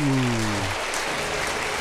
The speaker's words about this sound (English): Guys. No one should be clapping for that.